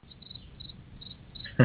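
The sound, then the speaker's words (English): Faint, steady cricket chirping on a quiet background, continuing for a moment before a brief louder sound cuts in at the very end. “Crickets.”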